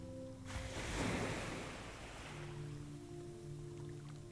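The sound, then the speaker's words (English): Rowing a boat out from a beach on shallow ocean water: a swell of splashing surf rises and fades in the first seconds, then a steady soft wash continues over a low, sustained musical drone. “You push the boat out from the beach into the shallow water, where you hop easily on board and begin rowing.”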